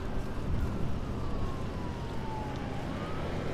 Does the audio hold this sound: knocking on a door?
no